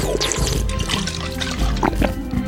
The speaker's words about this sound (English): I took a huge gulp from the bottle.